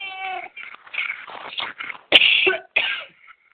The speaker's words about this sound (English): Sorry, I was trying to hold it away from you so I wasn't coughing in your ear. Do you have allergies, or are you getting over something? I'm not getting over something, actually. I was fine until just right this moment, so who knows?